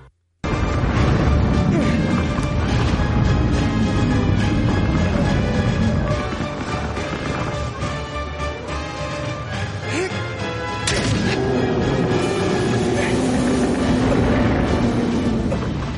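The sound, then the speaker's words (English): Loud, dense video game audio: driving music layered with repeated sharp stabbing impacts and wet blood-spray bursts, playing continuously with no talking and a brief shift in texture partway through. “You got that music, you got the stabbing, you got the blood spray.”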